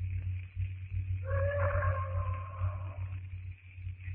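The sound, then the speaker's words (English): A bull ape roars miles away at night, one long wavering, howl-like call lasting a couple of seconds over a steady low rumble, with no one talking. “That bull ape is certainly doing a lot of boasting tonight. He sounds very close, John.”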